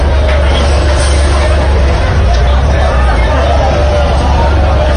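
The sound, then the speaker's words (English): A large partying crowd of fans surrounds a bus that cannot move, heard from inside the bus: loud, constant overlapping voices and cheering blur into a dense roar over a low rumble, steady for the whole stretch. “This audio is taken from inside the bus.”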